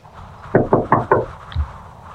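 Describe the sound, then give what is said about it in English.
Four quick, firm knocks on a door in an even rhythm, followed by a soft thud; no one speaks. “Yeah, I'll knock over here.”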